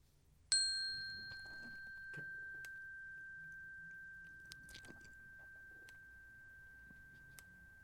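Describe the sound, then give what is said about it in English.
Soft chewing near the microphone with small wet clicks and crunches runs throughout, partly masked by a single bright ringing chime, played for Aretha Franklin, that strikes early and slowly fades. No one speaks. “You gonna chew the whole time?”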